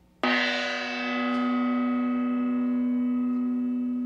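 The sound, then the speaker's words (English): A gong is struck once with a mallet, giving a sharp attack followed by a steady, bright metallic ring with rich overtones that sustains loudly for several seconds with no one speaking. “It is a sound gong makes. So I have to use this stick called mallet to make this sound.”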